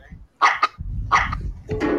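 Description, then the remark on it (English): A dog barks sharply several times in quick bursts, loud, while chasing a person, with a low rumbling noise running underneath between the barks. “I'm getting chased by a dog, man.”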